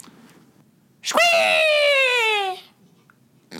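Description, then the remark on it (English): A person imitates a hawk's screech as a sound intro for a segment about the Atlanta Hawks basketball team: one loud, shrill, drawn-out cry lasting about a second and a half, its pitch sliding slightly downward, surrounded by near-silence. “Either way, it's a hawk noise.”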